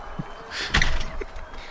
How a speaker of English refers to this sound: Oh, she's slamming the door.